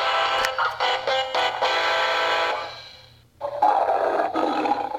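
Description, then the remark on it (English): A Switch and Go Dinos toy, MC Roar the Giganotosaurus, lets out a loud, harsh, electronic-sounding roar lasting a few seconds, falls briefly silent, then roars again with a rougher, growling tone. “I'm MC Roar, the Giganotosaurus.”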